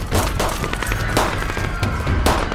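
Rapid gunfire crackles in overlapping bursts from all directions, several sharp shots layered over a dense, continuous roar of firing and low booms, loud and chaotic like a firefight, with people in a crowd shooting at others.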